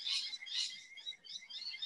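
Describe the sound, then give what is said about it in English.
Birds chirping in a steady, dense chorus of high, bright calls that pulse in repeated bursts, continuous, with no one talking. “Honestly, I think the birds are doing a better job than I am.”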